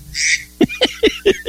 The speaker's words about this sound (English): I wish you'd get that duck out of here.